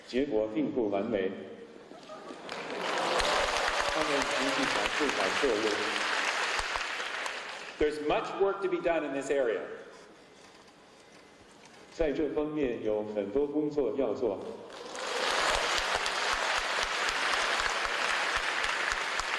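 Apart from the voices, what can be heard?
spontaneous applause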